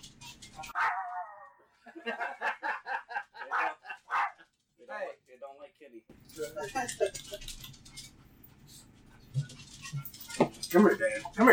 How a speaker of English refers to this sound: I brought him back. This one got a bath. I've never seen dogs so happy.